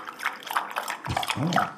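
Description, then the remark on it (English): A short, wet sip of a fizzy LaCroix drink: a crackly, bubbly hiss of liquid runs throughout, ending in a couple of low slurping gulps. “Let me take a little sip.”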